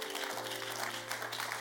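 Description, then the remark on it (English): An audience claps in a steady, dense wash of overlapping hand claps, with no pauses, over a sustained low musical tone that holds throughout. “You are not clapping well.”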